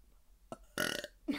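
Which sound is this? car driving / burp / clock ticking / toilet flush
burp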